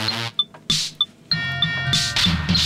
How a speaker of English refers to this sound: It's bells and tuba and crash. It's not a coherent beat. Like, nothing is holding down the rhythm.